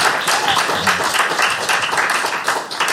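A steady round of applause from a crowd at a team quiz, given as a contestant is awarded points: dense overlapping claps with a few scattered cheers, sustained at an even loud level for a few seconds.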